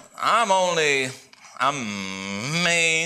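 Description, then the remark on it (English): A voice imitates a cow mooing, giving two long, drawn-out lowing calls. The second call is longer and rises and falls in pitch, with a brief pause between them. “Back off those shepherds, cow.”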